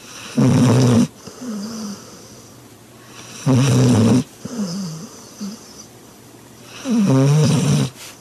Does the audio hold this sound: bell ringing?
no